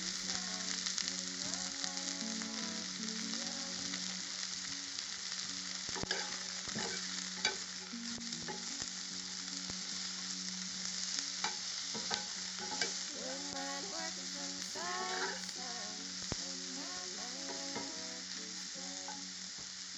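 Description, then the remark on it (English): Vegetables (peppers, garlic and onion) sizzle steadily in a nice hot pan while a utensil stirs and scrapes them as they fry until just brown. Occasional sharper clinks and scrapes stand out from the constant frying hiss; no talking. “We're going to fry up these veggies till they're just brown.”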